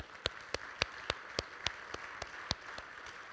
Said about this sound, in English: It is so important to recognize the people in this body that have sacrificed for us in the name of Jesus. Can we just give them a round of applause?